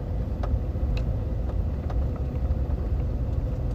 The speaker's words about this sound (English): Dead air. Just driving around the parking lot. I want to concentrate. It's hard to talk and then really, really concentrate.